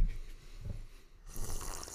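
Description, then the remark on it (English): Someone sips water with breathy, rough intake sounds: a low gurgling draw early on, then a longer, louder hissing slurp through the second half. No one speaks. “All right, this is me sipping water.”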